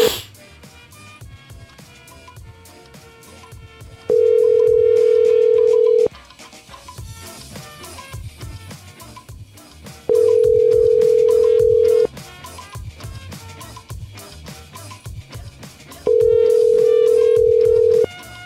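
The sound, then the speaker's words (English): A telephone ringback tone sounds three times, each steady burst lasting about two seconds with long gaps between, loud over continuous background music; nobody answers and no voices are heard. “Oh no, they didn't pick up.”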